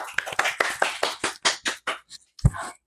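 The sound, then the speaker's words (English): A short round of applause welcoming a guest: quick, uneven hand claps from a few people, fairly loud, thinning out after about two seconds, ending with one sharper clap or thump. “Everybody give a round of applause, clap.”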